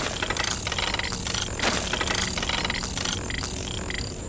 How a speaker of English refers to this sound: Moving back towards one of the strange bodies, I detected a slight whirring followed by a distinct clicking sound.